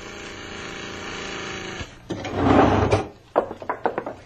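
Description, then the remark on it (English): A steady mechanical motor hum drones for a couple of seconds, then gives way to a heavy rumbling clunk and a quick series of metallic rattles and knocks as an elevator, called by ringing the bell, comes down from the second floor. “Someone's got the elevator up on the second floor. Ring the bell and bring it down.”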